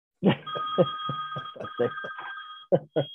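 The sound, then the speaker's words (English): A phone rings during a recording with a steady electronic tone that holds for about two seconds, while people keep talking loudly over it. “But just mute the phone for the show.”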